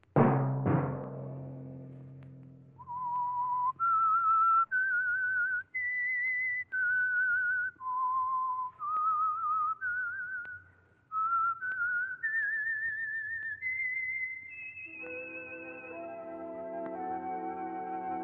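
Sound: whistled theme signature tune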